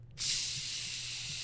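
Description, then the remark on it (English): A voice mimics a stream of urine, imitating someone urinating in a hallway, with a steady, breathy hiss that starts abruptly and holds evenly for over a second, a low hum running underneath. “I walk into my hallway and I flip the lights on and he's pissing in the hallway.”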